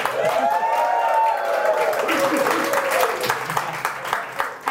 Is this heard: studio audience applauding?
yes